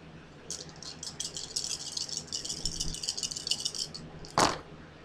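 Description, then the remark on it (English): Four dice, rolled for a might attack in a game, rattle and clatter in a rapid, continuous shake for several seconds, ending in one sharp, louder clack as they drop. No one speaks. “So actually, I will roll first.”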